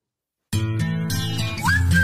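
After half a second of silence, an upbeat pop track from 2012 kicks in loud and full, with a bright whistled melody sliding up and holding over the beat near the end.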